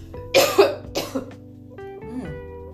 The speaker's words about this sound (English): But it does, the taste does stay on your tongue. And you can still feel it in your lungs a little bit because I'm about to cough.